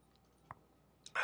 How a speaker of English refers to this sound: A little classy pour. You have a nice rye bourbon this evening. And with that, little sip